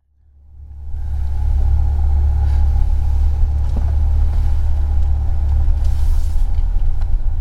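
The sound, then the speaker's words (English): A car drives into the small town of Holden, pulling onto its one street, with a deep, steady rumble of engine and road noise that swells up in the first second, then holds even and loud, with a faint hum riding above it. “You know, we're just pulling into the one street in town.”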